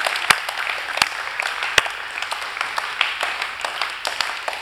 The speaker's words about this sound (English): Come on, just put your hands together this morning.